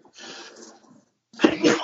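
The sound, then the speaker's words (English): A single sneeze: a soft, breathy intake of air, a brief pause, then a sudden loud, sharp burst of noise. No speech is heard. “Bless you. It's not COVID.”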